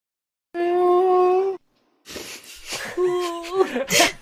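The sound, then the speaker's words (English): A person imitates a bear's whimper: a steady, nasal moaning tone held for about a second, then a pause and a rougher, breathy, wavering whine that rises into a brief cry. “A little bear whimper.”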